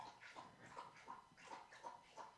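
Water being lapped up in quick, steady wet slurps, about three per second, close by and moderately loud, with no talking over it.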